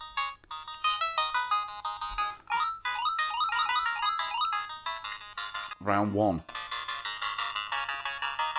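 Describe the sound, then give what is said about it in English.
Retro video game music from Mercenary Force (1990, Live Planning): a bright, beeping chiptune melody with quick stepping arpeggios plays continuously and loudly, briefly interrupted by a short warbling synthesized voice announcement before the tune resumes. “Oh, I fucking love that sound. Mercenary Force 1990 from Live Planning, which sounds great.”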